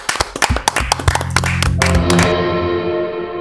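A small group claps in a quick, uneven burst for about two seconds, the sharp claps overlapping over a humming, distorted tone that rings on with an echo after the clapping stops.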